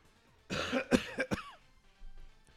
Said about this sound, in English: Apparently, my throat is now closing up on me. I keep coughing all the time. I can't clear my throat.